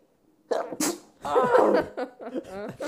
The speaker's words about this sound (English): Are you okay? He had to sneeze. Yeah, I had to.